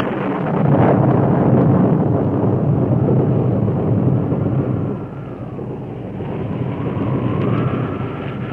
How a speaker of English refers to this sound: Two horsemen fought the driving wind and drenching rain.